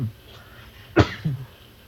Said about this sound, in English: I've had this cough.